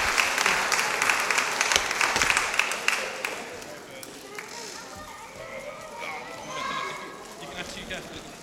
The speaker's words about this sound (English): Now, can you give a round of applause to all my little helpers, please? They've been fantastic and amazing.